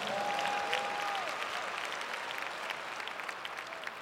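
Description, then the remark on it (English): A church audience claps their hands to praise God in sustained, dense applause, many overlapping claps forming a steady roar, with a brief high whistle-like tone near the start. “Clap your hands and praise God.”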